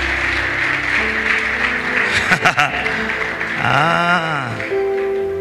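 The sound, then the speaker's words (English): An audience claps in a steady, dense wash of applause with a few sharper claps standing out, and then a voice rises over the clapping in a long sung or shouted note. “Clap for me.”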